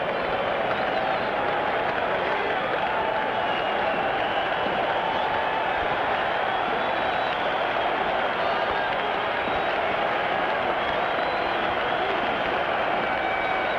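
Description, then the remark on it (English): A crowd of over 55,000 at a Major League Baseball game cheers as Nolan Ryan closes in on his 300th win, in a steady, sustained roar mixed with scattered clapping, holding a constant loudness for the whole stretch with no individual voice standing out. “Some question who the fans were cheering for earlier.”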